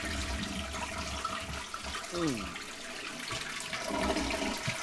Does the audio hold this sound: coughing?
no